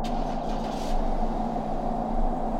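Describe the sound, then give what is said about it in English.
A car engine starts up and runs with a steady, low rumbling drone and a faint hiss on top, holding an even level throughout with no voices. “Then I heard him leave. I turned towards the window. His car started up.”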